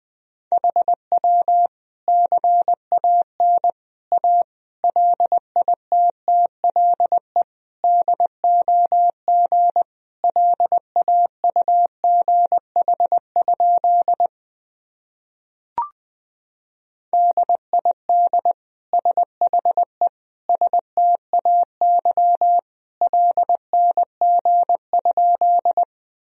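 Morse code at about 20 words per minute: a single mid-pitched tone keyed in quick short and long beeps, steady and fairly loud, with a pause and a brief click midway.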